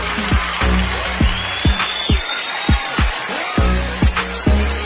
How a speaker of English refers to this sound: Now, see, y'all some disillusioned ladies clapping right now.